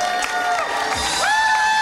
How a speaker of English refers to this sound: And please give a huge round of applause to Felicity. Thank you, Felicity Ward!